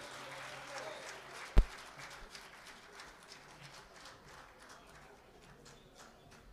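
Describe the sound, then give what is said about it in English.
An audience at a club claps steadily for a musician in a dense, crackling wash of applause that slowly fades, with one sharp thump early on and no voices. “Big round of applause for”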